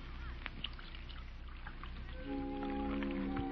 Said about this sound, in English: You know, there's something about a woman pouring tea. I don't know. Seems to bring out something in her.